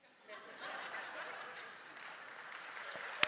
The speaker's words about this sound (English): I'll clap for that.